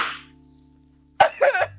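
After a quiet stretch, one sharp hand slap between two people in the same room cracks out, followed by a brief burst of scuffling noise and a low thump.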